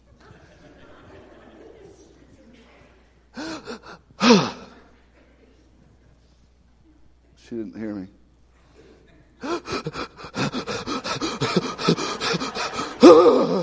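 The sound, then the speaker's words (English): A person imitates the heavy breathing they do when angry, with sharp gasps and drawn-out exhales, then a long run of loud, rapid, breathy panting, with a brief line of speech in between. “And now it takes a repetitious of heavy breathing.”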